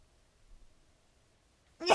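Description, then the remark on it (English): Nearly silent for almost two seconds, with only a faint low hum, then a sudden loud, sharp sneeze bursts out right at the end and is cut short. “One more second, because I think I got a sneeze again.”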